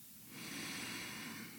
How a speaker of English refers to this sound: So taking one normal breath in and out.